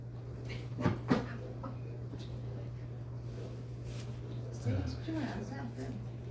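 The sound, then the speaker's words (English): A dog that had something in its mouth whimpers softly in a few short, wavering whines, with a couple of sharp shuffling bumps early on, all over a steady low electrical hum. “He's a bad, bad dog.”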